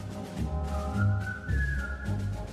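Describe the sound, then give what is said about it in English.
A jaunty marching tune carried by a group whistling in unison, steady and upbeat, with a band thumping out the rhythm underneath; one of the main songs from the 1957 film Bridge Over Kwai, about prisoners of war held by the Japanese in World War II. No one speaks. “This was the kind of one of the main songs from this movie about Japanese prisoners of war.”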